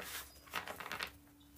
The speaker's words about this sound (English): One more good shuffle, and then we will get started with the reading.